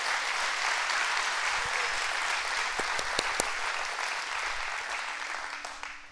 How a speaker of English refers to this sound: Now I know, go ahead and clap. That's the word of God. Go ahead and clap.